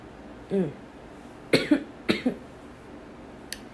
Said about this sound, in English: The enemy tried to take me out with a cough.